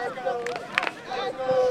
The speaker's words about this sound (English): Crowd trying to cheer BLA along.